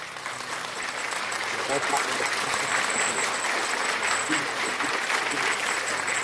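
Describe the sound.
A crowd claps steadily and loudly for several seconds, a dense wash of many hands with scattered voices calling out underneath, clapping in praise to Jesus.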